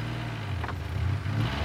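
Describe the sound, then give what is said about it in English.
A loud, steady mechanical growl in the distance, deep and rumbling with a constant low pitch, holding for under two seconds with no voices. “In the distance, a loud mechanical growl rang out, followed by a smattering of cheers.”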